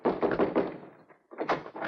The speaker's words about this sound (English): In that case, I'll knock.